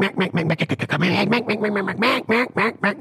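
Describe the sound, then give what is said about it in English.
A duck call blown, imitating ducks with a rapid, loud string of raspy quacks and short chattering bursts, some longer drawn-out notes mixed in, with no talking. “Sounds like ducks.”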